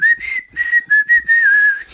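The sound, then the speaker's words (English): Someone whistles a short tune, a clear steady pitch broken into several phrase-like notes with brief pauses between them, and no talking alongside. “Maybe they're just whistling and it's like”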